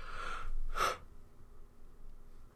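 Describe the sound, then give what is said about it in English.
A single yawn from a sleepy person: a long breathy intake followed by a brief, slightly voiced release, then quiet room tone for the rest. “I'm not yawning at your joke. I'm just sleepy.”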